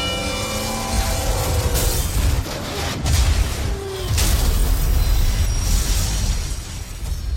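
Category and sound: vehicle, freight train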